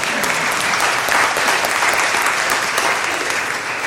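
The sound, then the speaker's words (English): A church audience breaks into steady, dense applause celebrating its donations to Hurricane Harvey relief, many hands clapping at once in a bright, continuous wash that holds at an even, fairly loud level for several seconds. “That'd be a good time to say, like, hallelujah, amen, or clap if you want.”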